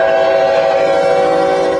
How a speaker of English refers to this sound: A railroad crossing drama caught on video. Oh, God!